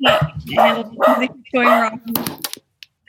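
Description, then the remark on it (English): A dog that has just been given DayQuil barks loudly, four full-throated barks in a steady rhythm, followed by a few brief clattering clicks before falling quiet. “just gave his dog Dayquil.”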